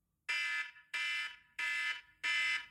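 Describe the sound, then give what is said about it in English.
A timer alarm set for five minutes beeps four times in a steady rhythm, each loud, shrill electronic tone lasting under half a second with short gaps between. No voices are present. “So I'm gonna set my timer, which is what I'm doing now”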